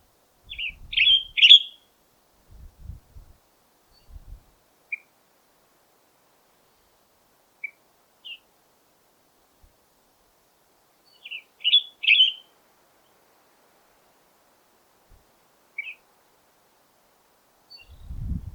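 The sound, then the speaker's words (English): A western tanager sings short, burry phrases in two clusters separated by a pause, with a few scattered single notes in between, clear against a quiet outdoor background with faint low thumps. “So one more time, here's the western tanager.”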